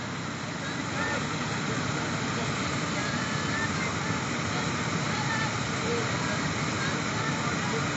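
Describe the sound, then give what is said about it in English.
A waterfall on a river in South Africa roars with a steady, dense rush of water, loud and unbroken throughout, like continuous white noise without pauses or changes in intensity. “Guided meditation at a waterfall in South Africa”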